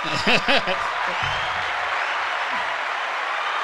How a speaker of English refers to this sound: Do the applause one too.